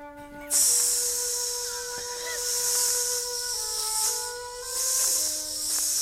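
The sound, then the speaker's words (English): A voice imitates a hissing asp with a loud, breathy, sustained hiss that runs for over five seconds, swelling and easing slightly, while faint steady tones hum underneath. “Could you do an impression of an asp?”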